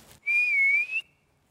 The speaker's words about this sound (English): I'm going to whistle.